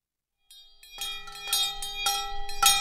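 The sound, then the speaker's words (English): The Reverend Stephen Blackmer rings two large hand bells on a Sunday morning at a church without walls on a hilltop in Canterbury, New Hampshire, calling his audience back from silent meditation. Steady, repeated rhythm, roughly twice a second, bright metallic tones overlapping and sustaining, no voices. “The Reverend Stephen Blackmer is ringing two large hand bells.”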